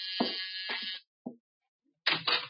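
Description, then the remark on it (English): A harsh, steady doorbell buzz rings for about a second with a couple of dull thumps inside it, then a single short knock, a pause, and a second brief burst of ringing. “Door, Archie. Yes, sir. I hear it.”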